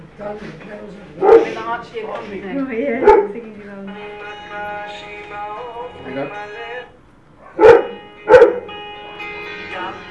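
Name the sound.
dog barking and whimpering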